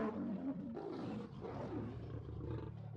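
Continuous low, guttural snarling and growling from several animals beneath a grill over a pipe, rough and throaty, rising and overlapping without pause as they tussle over food, with heavy breathing mixed in.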